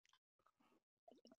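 Someone clears their throat in a few short, moist, raspy bursts, with brief pauses between them and the last burst a little louder and more voiced.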